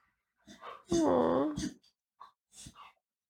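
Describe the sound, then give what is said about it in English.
A small female puppy gasps and chokes, probably from eating dirt off shoes, letting out a strained, whining wheeze between short rough breaths, fairly loud, with two quieter hacking bursts after. “A little puppy's gasping or puking, or she just... Probably choked.”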